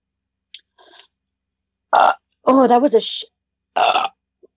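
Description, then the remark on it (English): A short, throaty burp rasps out, surrounded by a few other rough, croaky vocal bursts separated by brief silences. “That's a shitty ass burp.”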